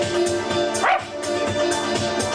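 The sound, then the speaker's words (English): A person loudly imitates a dog, with a quick run of rough, yappy barks and yips, fairly continuous and with a short rising whine near the middle. “You need to learn how to bark.”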